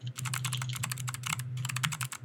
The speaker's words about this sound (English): That's my super clicky keyboard. It gets louder because I type really loud, so it's mostly like this.